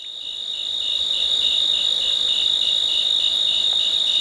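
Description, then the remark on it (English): A steady, dense chorus of crickets and cicadas on a summer night in the Cascade Mountains of Northern California, with a high pulsing trill repeating rapidly over a constant shrill drone, fairly loud, with no voices. “Crickets and cicadas form the backdrop to the splashes and croaks of bullfrogs.”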